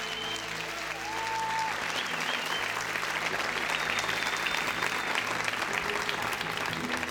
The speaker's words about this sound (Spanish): Y aunque ustedes no los conozcan, recíbanlo con un fuerte aplauso, porque es lo que vale por allá.